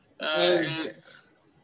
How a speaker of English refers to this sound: No, ladies, no, ladies and gentlemen, I am not afflicted with the coronavirus. Don't get scared by my occasional coughing. It is strictly pizza related indigestion.